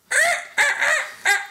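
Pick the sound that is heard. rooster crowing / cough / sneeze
rooster crowing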